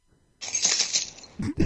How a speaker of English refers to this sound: No, because I'm in the living room and my bell's upstairs, but I have some keys I can jangle. Jangle them.